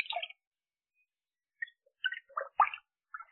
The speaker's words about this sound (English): Now step in. I'll help you. Take care. The water may be hot, and the tub may be slippery.